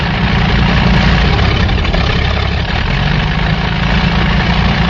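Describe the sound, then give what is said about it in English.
Ace Murphy's airplane roars over a diner in salute, a loud, steady engine drone with a deep low rumble and dense noise that holds constant for the whole five seconds, with no voices. “At that point, a plane once again roared overhead as one of their friends...”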